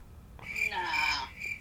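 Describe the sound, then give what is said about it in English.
Crickets chirp in a steady, shrill night chorus, moderately loud and continuous with a slight swell in the middle, put in as a sound effect in place of a cut pause. No voices. “It was like at least 5 to 6 seconds that I cut out of that and put some crickets in.”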